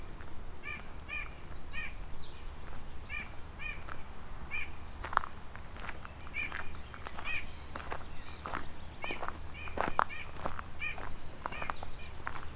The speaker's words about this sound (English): Several nuthatches here.